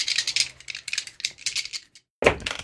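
Dice, including a blue, a purple and a red die, rattle in a quick run of small clicks for about two seconds, then after a brief pause clatter loudly onto a hard surface, with no one speaking.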